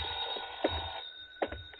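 A telephone rings with a thin, muffled tone, broken by two sharp bursts about a second apart, with no voices present.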